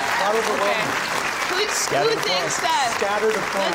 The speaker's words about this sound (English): Scattered applause.